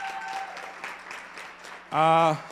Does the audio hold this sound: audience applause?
yes